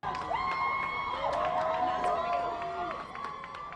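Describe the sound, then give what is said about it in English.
A waiting crowd of family, friends and fans cheers and shouts steadily for a few seconds as Adnan Syed walks out of a Baltimore courthouse, with several raised voices holding long excited calls over a continuous wash of crowd noise. “Years after being found guilty of first-degree murder, Adnan Syed walked out of a Baltimore prison to a waiting crowd of family, friends, and, as weird as it is to say, fans.”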